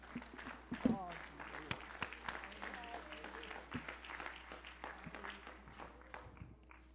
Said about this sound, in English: Oh, you can clap your hands unto the Lord and you may be seated.